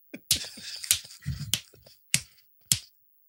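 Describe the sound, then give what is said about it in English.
About six sharp hand claps, clapping for the NHS, land at a slow, steady pace, each one crisp and fairly loud, with some low murmuring sounds between the first few. “Why are you so clapping for me? Nah, brother, we're clapping for you, you know?”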